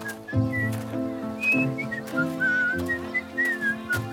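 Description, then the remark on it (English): A person whistles a cheerful, bouncy tune in short rising and falling phrases while walking towards a weaver's shop, clear, over a soft steady musical backing with no talking. “tied his sandal straps, and whistled happily as he walked towards the weaver's shop.”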